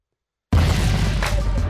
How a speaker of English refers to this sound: Wow, so just as I said your name, it was like an explosion.